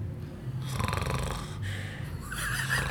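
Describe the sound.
A voice mimics heavy snoring, as heard from someone behind in a cinema just as a film was about to start: rough, rattling inhales repeated in a few loud bursts over about three seconds, with no other talk.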